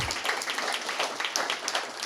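A crowd claps in a steady, dense patter of many overlapping hand claps lasting a couple of seconds at moderate volume, with no talking over it.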